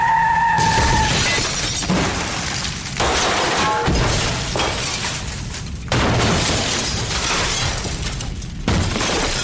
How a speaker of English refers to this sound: But again, this is a non-canonical TV adaptation, so let's just safely assume that Shanice wound up in the same car accident that took the kids' parents.